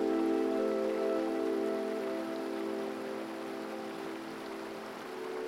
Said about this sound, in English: You walk toward the sound of the river